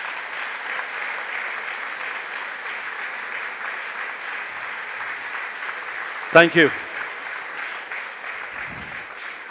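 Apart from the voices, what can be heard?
audience applauding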